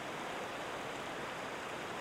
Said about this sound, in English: Her city, perched in the walls of a narrow canyon, rose level upon level from where she stood next to the river at the canyon's floor. Cold mist rose from the splashing waters, and everything around her in this favorite place was damp.